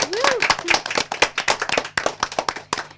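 A room full of people applauding everyone in the room and those who performed, during a live broadcast of the radio show Queering the Air on 3CR 855 AM: dense overlapping claps at a steady, lively pace, loud, with a few brief voices or whoops mixed in near the start.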